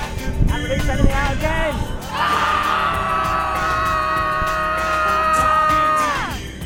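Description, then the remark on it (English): A burst of mixed voices, then a group lets out one long, loud, sustained scream to release tension, holding steady for several seconds before breaking off. “Just scream out whatever you want to get out. And even if you don't think of anything, just have a good old scream anyway.”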